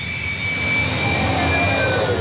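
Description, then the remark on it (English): A spaceship sound effect flying in: a loud, steady jet-like roar with a thin high whine sliding across it, building slightly in strength over a couple of seconds. “Nice little sound effect to demonstrate that.”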